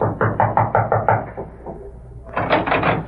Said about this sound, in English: Then, after waiting a few moments longer, he approached and rapped on the door.